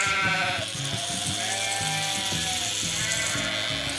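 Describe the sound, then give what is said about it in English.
Several sheep bleat in England during sheep shearing, in overlapping, wavering cries, loud, over a steady mechanical buzzing rattle that runs throughout. No one speaks. “When a sheep is sheared, all the fluffy wool comes off, and then they're not fluffy.”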